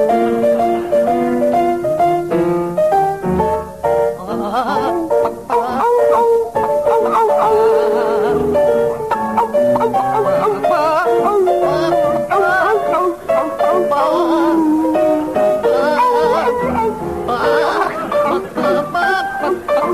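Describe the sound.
Two performers sing a slow, crooning melody as a dog and a chicken, in dog-like howls and yelps mixed with chicken-like clucking tones, loud and continuous throughout, with wavering pitched notes over a light accompaniment.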